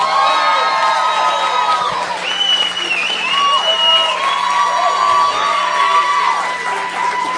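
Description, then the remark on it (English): A crowd at Theater Windsor cheers loudly and continuously for a comedian recording his first DVD, with high whoops and shouted voices rising over a dense wash of noise that holds steady throughout. “Please make some noise for”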